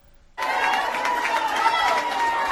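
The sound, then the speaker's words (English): After a brief hush, a loud crowd of Dublin fans abruptly erupts into sustained cheering and clapping, standing on their feet, packed into a clubhouse bar in Meath during the All-Ireland final, continuing steadily without letup. “An absolute sea of Dublin fans clapping, standing on their feet, supporting the Dubs.”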